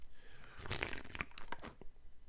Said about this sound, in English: Hang on, let me sip some coffee. Maybe that's the problem.